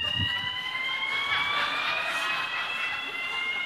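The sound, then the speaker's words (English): A building fire alarm blares continuously, a steady high-pitched electronic tone that holds without a break over a wash of room noise and reverberation. “Do reflect for a few minutes, if you would, and I'm sure in a few minutes that they'll be able to shut that alarm off.”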